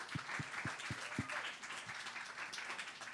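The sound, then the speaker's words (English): An audience claps and applauds in a dense, steady wash of hand claps, with a handful of evenly spaced low thumps beating under it during the first second or so. The clapping is in praise of God and Jesus. “Give it up for being God being a father to the fatherless.”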